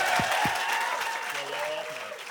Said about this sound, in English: And a big round of applause for Donal Gleeson.